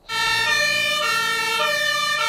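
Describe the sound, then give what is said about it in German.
A fire engine siren of the Brilon fire brigade blares loudly and alone, a bright, buzzy tone with rich harmonics that starts abruptly and holds steady, shifting pitch slightly a couple of times. “Da hilft nur noch ein Anruf bei der Feuerwehr in Brilon.”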